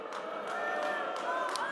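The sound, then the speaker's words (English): A large crowd at a political candidates' event boos a speaker on stage who criticizes Donald Trump, in a sustained, droning chorus, loud and steady throughout with overlapping voices blending into a continuous jeer. “you can hear the booing there.”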